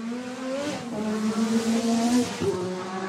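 A Formula One racing car engine drones steadily for a few seconds, its high, buzzy whine climbing gradually in pitch as it accelerates, loud with no voices.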